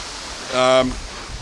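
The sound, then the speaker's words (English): Strong wind rushes as a steady, broad roar the whole time, briefly joined midway by a short voiced, tonal sound that rises above the noise. “Well, we're basically recording this in the fucking hurricane.”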